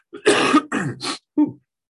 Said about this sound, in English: Delayed cough. That little puff got me a little more than I thought.